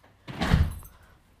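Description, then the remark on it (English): A door opens abruptly as someone pops in, with a single broad whoosh and thump lasting about half a second, then all falls quiet. “popped in the door and scared the crap out of us”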